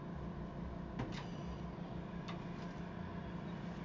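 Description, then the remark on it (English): A door is pushed shut with a couple of short knocks and clicks, followed a moment later by a single latch click, all over a steady low background hum with no voices. “Why are you closing the door?”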